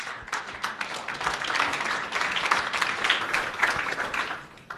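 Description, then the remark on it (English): An audience applauds a professor being introduced to give a talk, many hands clapping in a dense, crackling wash that holds at a fairly even loudness throughout, with no voices rising above it. “Won't you please give a big round of applause”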